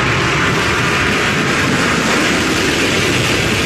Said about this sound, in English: Our first human flight on New Shepard. So far, phenomenal flight. Our booster is about to return to its landing pad. There we see engine relight. That is sonic boom.